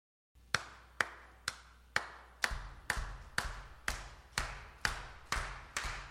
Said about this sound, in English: I wonder if you could help keep a rhythm with us today. Could you clap along with me like this?